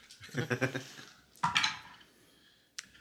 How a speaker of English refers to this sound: Why don't you throw an extra dice in there?